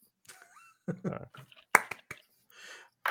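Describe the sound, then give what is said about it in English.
A single sharp, loud hand clap in the theme song of the TV show Friends cuts in midway through a stretch of voices vocalizing, followed by a few softer scattered taps and a brief hiss. “I like the clap.”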